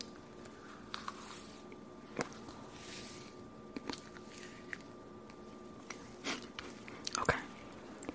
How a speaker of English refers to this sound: like chewing.